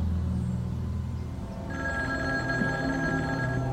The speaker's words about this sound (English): The Kennedys have two outdoor phones installed on the property. One of the phones rings.